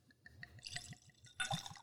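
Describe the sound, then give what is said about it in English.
100-proof liquor is poured heavily into a glass, splashing and gurgling with a quick rhythmic glug before the stream swells louder near the end. “Ooh, yeah, heavy pour.”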